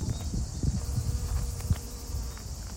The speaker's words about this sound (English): You can probably hear the sound of the wind rustling the fronds of lavender. Bees everywhere, the place is buzzing with bees. I would not have expected this kind of sight in the province of Guadalajara, in the region of Castilla-La Mancha.